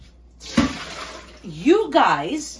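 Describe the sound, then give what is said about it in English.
Water pours and splashes steadily as soaked cut potatoes are strained, a rushing flow that starts abruptly and continues, with a voice talking over the latter half. “So, right off the bat, what I wanna do is I wanna strain my potatoes.”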